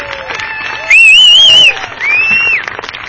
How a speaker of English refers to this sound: Congratulations to Transylvania on an outstanding season which culminated in the HCAC Championship game. Let's have a round of applause for the Transylvania Pioneer.